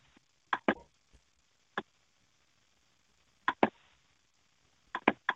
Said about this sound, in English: The hell is that clicking sound? I'm just doing some stuff on my computer. The mouse pad on some of these computers, when you click on something, it does make a sound.